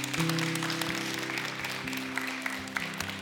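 A crowd applauds steadily for a few seconds for their student pastor and worship leader, a dense wash of clapping with a low sustained tone humming underneath throughout.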